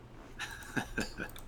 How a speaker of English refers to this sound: With the dog clanking.